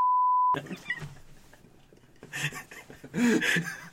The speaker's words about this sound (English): I'm just gonna put like some censorship beeps over that and this because that was too much.